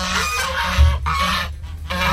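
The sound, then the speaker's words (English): Geese honking in a loud flurry of harsh, nasal calls that repeat with brief pauses between them. No one is speaking. “Geese. Yeah, well done.”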